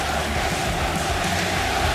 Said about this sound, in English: And right now, listen to the cheer. This crowd has not been silent since the first moment, the first entrance.